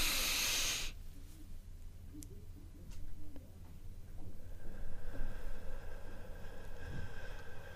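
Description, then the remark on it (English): A forceful, hissing exhale through the mouth, part of a breathwork breathing demonstration, bursts out for about a second, then gives way to softer breathy rustling and a faint, steady hum, with no one speaking. “It's something that I have to say that I've become more conscious of in recent times, especially when I sit by myself and I tried to concentrate my breathing.”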